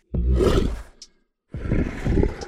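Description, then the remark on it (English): A lion roars twice, loud, each roar a deep, rumbling burst of about half a second to a second, with a brief silent pause between them. “If anything, they'd pick a lion like me.”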